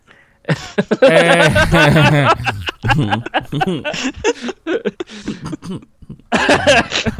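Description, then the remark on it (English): A run of heavy, hacking coughs, with strained, throaty bursts coming one after another, a brief lull, then another rough fit at the end. “I'm just going to cough my guts all over the place.”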